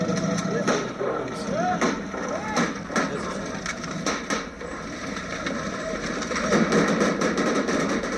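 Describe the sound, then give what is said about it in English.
Rapid gunfire from American bodyguards in the car behind President Karzai's car during an assassination attempt in Kandahar: a string of sharp, loud cracks in irregular bursts across the whole stretch, heard over a constant rumble of crowd noise and shouting voices. “American bodyguards rained rapid fire from the car behind.”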